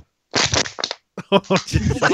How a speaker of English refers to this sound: Oh, jeez. Oh, your shotgun sounds a little plastic water bottle-y.